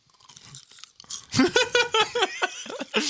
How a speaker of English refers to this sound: You hear me chewing?